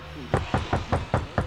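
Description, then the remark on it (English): Six sharp knocks rap on a door in a steady, evenly spaced rhythm, clear, with no voices over them. “Dean knocks on the door and says, Dr. Badass, and then he opens the door.”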